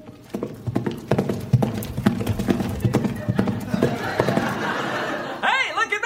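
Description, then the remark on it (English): A horse's hooves clip-clop in a quick, steady rhythm close by for several seconds, then the horse gives a brief, shrill whinny right at the end. “That horse just talked!”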